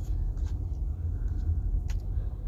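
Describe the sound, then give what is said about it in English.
A steady low engine rumble from a car or motorcycle idles continuously, with a few faint higher clicks and hisses over the drone and no one speaking. “I can't tell if this is a motorcycle or if this is a car or, like, what the case may be, what's going on.”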